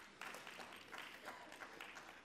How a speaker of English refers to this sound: That would be called a smattering of applause.